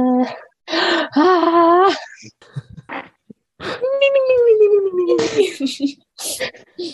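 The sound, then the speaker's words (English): A voice imitates fast, anxious breathing as if having a bad dream: quick noisy breaths mixed with whimpering, moaning tones that rise and fall, fairly loud, in uneven bursts with brief pauses. “I'm having a bad dream, so I'm breathing a little faster.”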